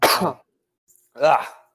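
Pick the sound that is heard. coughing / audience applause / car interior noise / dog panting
coughing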